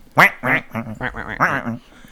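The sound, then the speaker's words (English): A quick run of nasal, raspy duck quacks, about five or six in a row, fairly loud, sounding like a human voice imitating a duck rather than a real bird. “It's basically just a duck. Just quack.”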